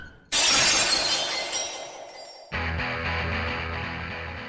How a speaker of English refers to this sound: So yeah, no, you're able to back up and slam into this invisible wall, and you can see it shatter like glass.